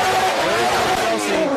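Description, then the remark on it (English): A loud, continuous roar of a revving drift car engine with a harsh, hissing tire squeal layered over it, sustained for the whole moment, as the car initiates a drift on a qualifying run. “So here he goes as he initiates.”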